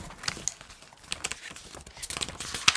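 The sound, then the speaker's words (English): A folded piece of paper taken from a box is unfolded: a run of crisp crinkles and rustles with sharper crackles near the end. Fairly quiet with no voices. “That was me unfolding it.”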